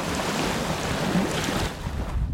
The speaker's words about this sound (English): Ah, fuck. This is windy as fucking ball sacks today. Whatever the hell that means.